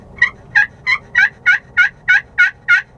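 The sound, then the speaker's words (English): A turkey friction call worked with a striker, held like a pencil at an angle and moved in half-moon strokes, gives a steady run of about nine raspy, high-pitched yelps, evenly spaced and fairly loud, with no talking over them. “this is a Striker, and they make different ones, and they all kind of sound their own little way”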